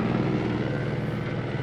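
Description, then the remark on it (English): An Orange County Sheriff helicopter drones steadily overhead, its low rotor thump pulsing in an even rhythm with a broad engine roar, fairly loud and continuous throughout with no one speaking. “That is the sheriff helicopter”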